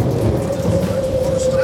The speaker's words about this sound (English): Rain poured down. The river flooded. A tornado hit.